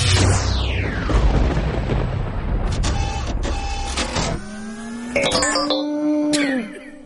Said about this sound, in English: Space lightning thunder sound with a robot finish and a twist of ghost.